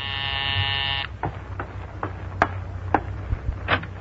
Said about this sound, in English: Take such an ordinary little thing as the ringing of a doorbell. Simple enough, only the doorbell of a small apartment in Upper Manhattan, that's all.